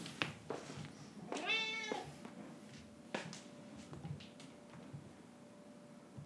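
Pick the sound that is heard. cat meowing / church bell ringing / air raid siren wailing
cat meowing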